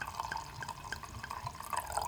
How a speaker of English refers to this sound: Get comfortable and pour the wine. I'm going to do it with you.